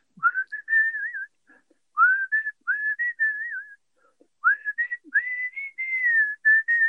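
A man whistles clearly in several bright phrases with gliding, tune-like pitches and short pauses between them, carrying on for several seconds with no talking.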